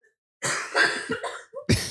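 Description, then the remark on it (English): A woman coughs repeatedly, a string of harsh, loud coughs with a brief pause before a final forceful burst. “She's coughing up a storm.”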